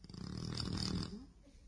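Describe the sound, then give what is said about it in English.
A man, a father who has snored in his sleep for 41 years of marriage, snores once, a rough, rattling breath lasting about a second before trailing off into quiet breathing, recorded at a soft level. “And he's snored like this for how long?”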